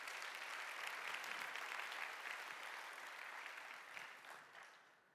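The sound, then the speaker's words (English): An audience claps steadily, many hands merging into a dense, crackling wash of applause that holds for several seconds before tapering off toward the end. “You can clap now for that if you want to.”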